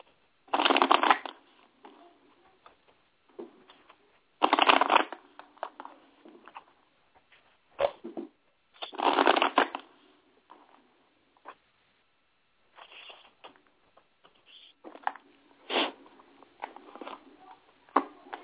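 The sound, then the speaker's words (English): A deck of tarot cards being shuffled for a reading, with three loud riffling bursts followed by softer sliding and tapping as the cards are handled and squared; no one speaks. “One moment while I shuffle.”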